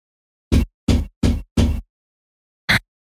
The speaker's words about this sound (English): I don't know if you heard my mouse thumping there. Sorry.